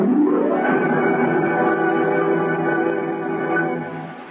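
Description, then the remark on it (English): Wind howling in a chimney: a steady, loud, hollow moaning tone that swells slightly at the start and holds for several seconds, fading a little at the end, with no talking. “That's the classic sound of wind howling in the chimney, James.”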